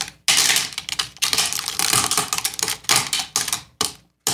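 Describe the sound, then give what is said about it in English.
Glass breaking and crunching in a run of sharp, bright crackling bursts, loud and dense, broken by a few brief pauses, with no voices. “Glass is correct.”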